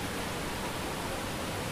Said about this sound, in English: I didn't think it was going to be raining this much.